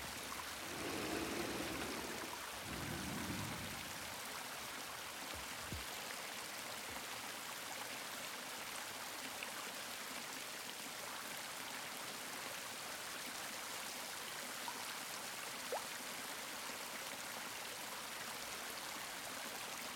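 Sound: waterfall rushing water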